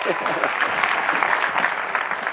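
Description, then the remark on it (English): An audience applauds for Cary Grant, a dense, steady wash of many hands clapping that holds at an even, fairly loud level throughout, with no voices standing out. “How about a round of applause for good old Cary, huh?”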